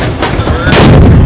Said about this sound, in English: It starts flying towards the ring and it's making that rocket noise like that. Pew! And it hits the corner post. And that explosion was probably the biggest explosion I've ever seen in any fireworks exhibition anywhere in my life.